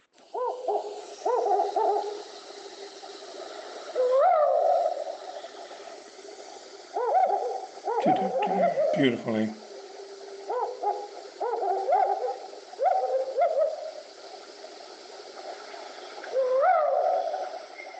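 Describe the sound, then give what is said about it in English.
An African wood owl hoots in repeated rhythmic phrases of low, mellow notes, with a brief burst of louder, rougher calling partway through and a faint word spoken once. “There we go, the African wood owl.”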